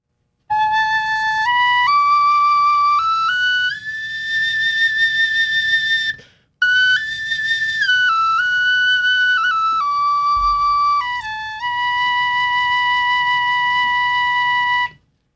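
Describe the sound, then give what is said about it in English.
A shrill, high-pitched whistle flute plays a slow tune of held notes stepping up and down, loud, with one brief breath pause midway and no talking. “This is still a very high flute. It's a whistle flute.”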